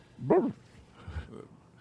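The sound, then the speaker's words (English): A person imitates a dog with one loud bark, followed by a softer, lower second bark-like sound a moment later, with no other speech. “Try to communicate something to Eric, but all you can do is bark”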